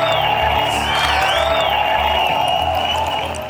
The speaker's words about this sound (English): We had to edit this down because the applause just went on and on and on forever.